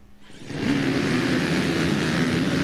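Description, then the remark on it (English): The first row of XC1 Pro class off-road racing motorcycles launches at the start of the Dunlop Tires Tiger Run GNCC in Union County, the engines surging from quiet into a loud, sustained, rasping roar with rising revs and no talking. “And row number one, the XC1 Pro, will be off and rolling at the Dunlop Tires Tiger Run GNCC.”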